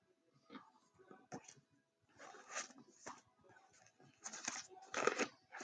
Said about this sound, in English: I'm just going through some of this paper.